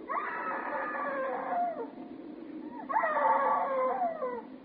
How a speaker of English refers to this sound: Why didn't you scream before? Why didn't you scream so Daddy could hear you?